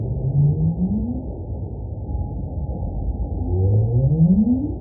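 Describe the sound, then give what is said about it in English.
Two long, low whale moans sweep slowly upward, one early and a louder one near the end, over a steady murky underwater rumble with no voices. “One of the most common and popular ways to think about whale sounds is this concept of whale song.”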